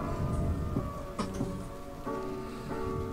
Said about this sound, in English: I'm digging everything so far. But I didn't like the silence in the background. That's why there's rain sounds too. I need things happening. I don't like dead air, you know? So even when I'm not talking, I want to hear something.